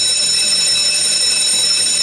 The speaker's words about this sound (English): Is that bell ever going to put you out of your misery and just ring?